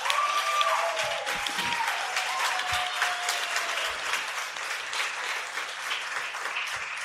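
Steady audience applause, a dense patter of many hands clapping at a fairly even loudness for several seconds, with a faint tone gliding downward near the start.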